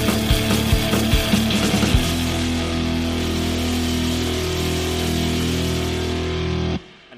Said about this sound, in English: it sounds like you're punching your mic